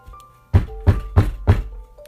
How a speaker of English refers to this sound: He was wiping the vomit off his chin when he heard the knock at the front door. Who the hell can that be this early in the morning?